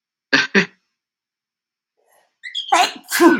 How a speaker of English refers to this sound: And I'm going to sneeze again. Hold on.